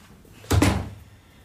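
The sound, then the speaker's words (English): A front door shuts as a dinner guest leaves, with a solid, double-knock thud, a quick pair of impacts followed by a short fading rattle, then quiet room tone. No one speaks. “And I will tactfully get up and see you to the door.”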